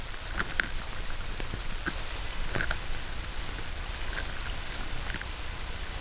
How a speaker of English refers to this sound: It's that some water sounds. So what happens when you take a resonant frequency of some water? So we just have recording some water that's got a snapping shrimp in it.